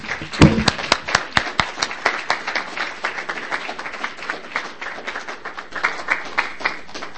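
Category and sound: crowd, audience applause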